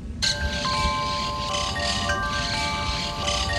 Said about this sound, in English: Birds and the chimes. More than a week later, when we were able to get to Nir Oz and take these images, there was still that strange, sickening silence. Those birds, some flies, a breeze blowing through broken windows.